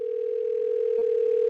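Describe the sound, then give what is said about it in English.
A telephone ringback tone sounds on an outgoing call to Taylor Creek Fly Shop in Basalt, Colorado: a steady, mid-pitched electronic hum that holds evenly for about a second and a half, with no voices. “So I decided to call up Taylor Creek Fly Shop in Basalt, Colorado, right on the confluence of the Frying Pan and Roaring Fork Rivers.”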